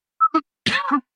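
A fairly loud cough from a man after smoking a joint: two quick throaty catches followed by a longer, rasping hack, with no talking around it.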